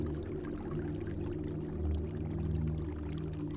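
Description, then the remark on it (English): Steady, continuous rush of a waterfall, a low, dense roar that holds even throughout with no pauses. There are no voices, and the sound is moderately soft. “You reach out an open palm into the rushing water and feel a moment of surprise by the chill and temperature.”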